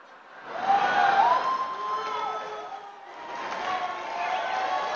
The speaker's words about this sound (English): So somebody actually booed him. I heard that. Right. I mean, that's how big an ass. When you get booed at CPAC and you're Ted Cruz, like, that means that literally there are 8 billion people on this planet.